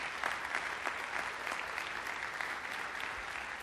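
A crowd claps steadily as a friend, the school's preschool director, is invited up, a dense, even wash of many hands with no letup and no voices standing out above it.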